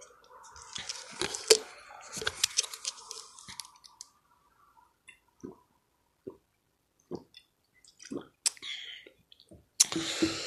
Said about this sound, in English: Some of that y'all had to drink water. Throat was dry.